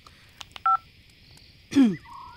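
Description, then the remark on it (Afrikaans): A mother's phone rings late at night with a short electronic ring, a single clear two-tone beep, followed a moment later by a brief swooping, warbling sound against a quiet background with no talking. “Ma, dis ma se foon.”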